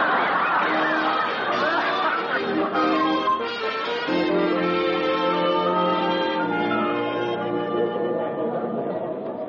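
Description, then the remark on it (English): A steady murmur of a theater crowd's chatter, many overlapping voices blending into a continuous hum with occasional brighter exclamations, holding an even loudness throughout. “Oh, my, there's a crowd.”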